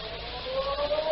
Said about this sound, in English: The next morning, just as the ferry building siren was announcing 8 o'clock to downtown San Francisco